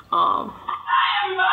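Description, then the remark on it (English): Voices yell loudly, a sustained, rising burst of shouting that swells and stays strong for over a second, like an excited crowd. “Oh my God, why are people yelling?”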